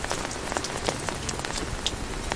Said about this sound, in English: I want you to hear the lovely pitter-patters of the rain, but I don't want your lovely little ears to be subjected to the howling winds, the harsh howling winds. So, I think conditions are perfect right now.